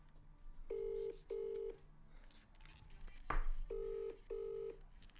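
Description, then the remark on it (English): A phone ringtone plays clear, two pairs of short buzzy tones in a ring-ring pattern, separated by a brief sharp knock in the gap between them. “That's my ringtone for some reason.”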